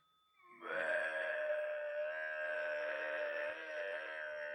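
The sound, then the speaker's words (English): A person imitates a cow's moo: one long, loud, droning groan with a buzzy, harmonic-rich tone that holds a steady pitch for about four seconds. “Give us a moo.”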